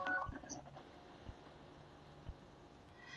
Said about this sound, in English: Oh, we're getting a phone call. Hold on a minute.